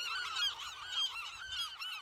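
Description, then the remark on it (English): A dense chorus of seabirds shrieking and calling over one another at night on Año Nuevo Island, continuous and overlapping like a busy colony, loud, with no voices. “He staggers towards the edge in the red light of my lamp, raises his wings, and seems to vanish into the shrieking black sky.”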